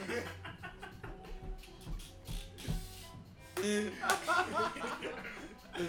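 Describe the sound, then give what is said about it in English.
A rapid series of sharp, fleshy slaps to a woman's face lands one after another at an uneven pace, fairly loud, with voices and some chuckling mixed in underneath. “Slapping the shit out of her.”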